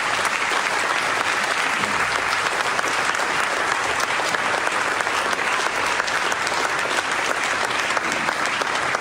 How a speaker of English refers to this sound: They're clapping for him, right?